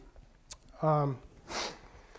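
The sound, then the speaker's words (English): A single quick sniffle from allergies, moderately loud, follows a short voiced hum. It is an airy nasal intake lasting a fraction of a second, with quiet background noise before and after. “To ask you to bear with me a little bit, I have a little bit of allergies going on, so there might be a few sniffles here and there, but Lord willing, we'll get through this together.”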